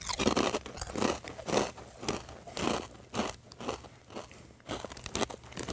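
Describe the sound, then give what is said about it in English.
Loud crunching of someone chewing kettle chips, with repeated sharp crackly bites in an uneven rhythm and no talking. “Apologizing for the loud crunching here, because we got some kettle chips going on.”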